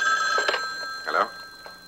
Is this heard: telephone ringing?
yes